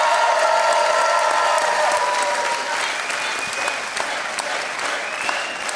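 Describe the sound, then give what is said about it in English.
Steady, loud audience applause for Ken Jennings fills the whole stretch, a dense patter of many hands clapping with some faint whoops or cheers rising above it, easing slightly toward the end. “But anyway, let's hear it for Ken Jennings, everybody.”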